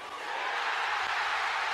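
A big wrestling crowd at a Raw show roars in a loud, sustained pop, a dense wash of cheering that swells in the first moment and then holds steady without letting up.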